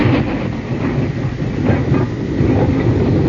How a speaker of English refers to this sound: Oh, yeah, that's a record of a train in West Virginia. It is. It's an authentic record of a train in West Virginia.